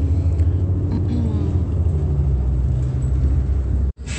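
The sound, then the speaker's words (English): A bus engine rumbles loudly and steadily, a deep continuous drone with road noise, cutting out abruptly for a moment near the end before resuming, as the bus lets a passenger off away from a bus stop. “Alrighty, 3214, letting the third party off of the bus at no bus stop.”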